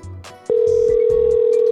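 A loud, steady electronic phone ringing tone starts abruptly partway through and holds at one pitch to the end, over faint background sound, as an outgoing call waits to connect.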